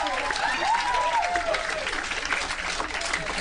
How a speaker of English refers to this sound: I won't question what you guys deem worthy of applause, but I just won't.